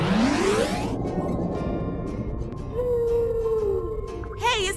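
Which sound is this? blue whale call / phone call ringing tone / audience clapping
blue whale call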